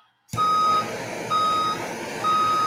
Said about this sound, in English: Back that thing up. I thought you were going to back the dump truck up.